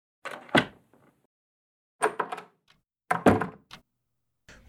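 A door opens and shuts with a few clattering thumps and latch clicks in three short bursts, separated by brief silences; no one speaks.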